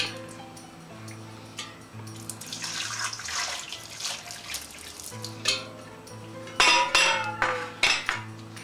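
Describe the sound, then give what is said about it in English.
Boiling hot water is poured steadily over raw turkey to clean it, a hissing splash lasting a few seconds, followed by several sharp clinks of pots and utensils over a low kitchen hum. “Pour the boiling hot water over the turkey.”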